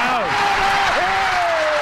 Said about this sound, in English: I mean, that Philly crowd loved Tebow so much. Listen to the way they roared.